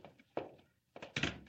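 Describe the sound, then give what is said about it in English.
An office door swings shut with a solid thunk, preceded by a softer knock and followed by a heavier clunk as it latches, with no voices. “Yes, come into my office and close the door.”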